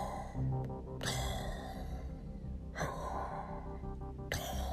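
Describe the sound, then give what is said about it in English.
A person imitates heavy breathing through a CPAP mask, likened to Darth Vader: three long, raspy breaths at a slow, steady rhythm, fairly loud, with no talking. “Oh, also, when you first put it on, you first start breathing, it's like Darth Vader.”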